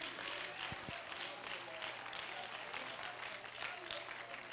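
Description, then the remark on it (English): A worship audience claps hands continuously to praise the Lord, producing a dense, steady wash of overlapping claps at an even, fairly loud level with no voices standing out, over a faint low hum. “Oh, clap your hands and let's praise the Lord.”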